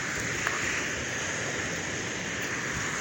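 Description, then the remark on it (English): Steady rainfall hisses evenly across the whole stretch, a dense wash of water noise with a faint tap or two and no voices, constant and unbroken at night, heard outdoors in a quiet, peaceful setting. “You listen to the beautiful sounds of the water right now.”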